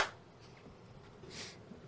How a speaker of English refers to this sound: Two claps. That's good.